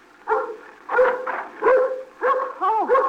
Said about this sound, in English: now you stop your barking now.